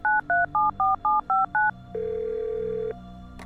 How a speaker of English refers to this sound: stops the recording on his phone, then dials.